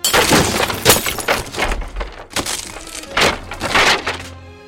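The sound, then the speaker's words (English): A glass display case is smashed apart with a sword in a loud, chaotic burst of shattering glass and splintering wood, with repeated crashing impacts and debris tinkling as it settles. “You smash it into nothing but a pile of glass shards and wooden splinters.”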